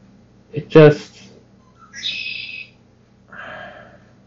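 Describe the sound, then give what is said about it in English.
After a brief breathy vocal burst, a bird chirps twice in short, high, warbling phrases separated by a pause, clear with a quiet background. “Speak of the devil, it's a bird.”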